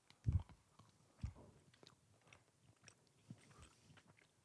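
A crisp bite into a Milky Way chocolate bar followed by a few seconds of soft, wet chewing on something sweet and chewy, with small irregular smacks and no talking.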